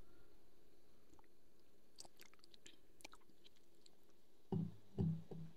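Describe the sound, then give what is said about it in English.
A quiet first sip of a freshly shaken pineapple margarita made with tequila, pineapple juice and triple sec: a few faint clicks and taps, then two short, soft mouth-and-swallow sounds near the end, with no talking. “But without further ado, first sip.”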